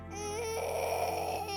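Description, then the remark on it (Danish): A child cries in a sustained, strained wail that swells partway through and holds steady, fairly loud, with no talking. “Der er flere utrygge børn, og det kommer til udtryk med mere gråd.”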